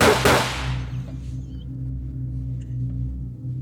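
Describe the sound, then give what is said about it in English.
A single sharp gunshot sound effect cracks at the very start and rings out in a fading tail, leaving low, steady droning music tones underneath for the remaining seconds. “I got two into the music of the gunshot sound. Check this one out.”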